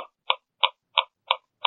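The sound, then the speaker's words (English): Computer mouse clicks while browsing the NBA Home website, five crisp, brief taps in a steady rhythm about three per second, moderately loud, with silence between them and no talking. “I keep hearing, like, mouse clicks. Oh, yeah, that would be me.”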